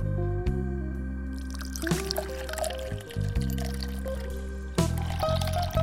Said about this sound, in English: So perhaps some sparkling water? Ah, that's a great choice. Yes, I'm in. So let me make you a drink.